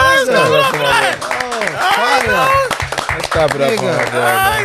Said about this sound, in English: Let's clap it up for that.